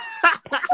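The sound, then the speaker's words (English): A person makes two quick, loud, throaty barking sounds with their voice, imitating a seal. The short harsh bursts come one right after the other with a brief gap between them. “that seal was really barking.”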